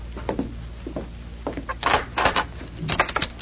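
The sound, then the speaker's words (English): A door is opened, with a few soft clicks and knocks followed by louder creaking, scraping wooden bursts, a brief pause, then another rattling scrape. “Shorty, open the door, but stay behind it.”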